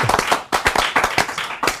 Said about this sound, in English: Round of applause, yes.